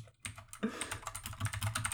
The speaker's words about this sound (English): Welcome to a new edition of We Ain't Seen Nothing Yet, accompanied by a sea of clattering keyboards.